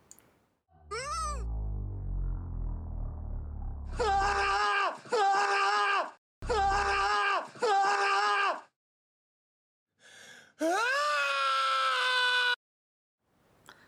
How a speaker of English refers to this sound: Yes, can you drop the audio here, please, and loop the scream. The scream, just loop it for a bit.